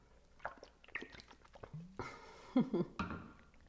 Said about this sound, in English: Oh, I need to breathe. Oh, I need a drink of water. Which right now, I need a drink of water.